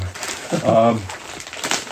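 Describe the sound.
Plastic crinkling and rustling as a plastic bag is torn open, in short scratchy bursts, with a brief voiced exclamation partway through.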